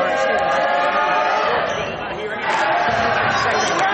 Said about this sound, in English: The Eagles crowd is working, even though, like, I don't really condone that. That's just poor sportsmanship by the Eagles fans.